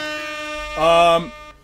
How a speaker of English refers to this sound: You're getting an air horn, my friend.